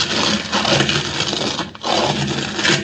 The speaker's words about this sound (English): Stand back, Kino, while the door closes.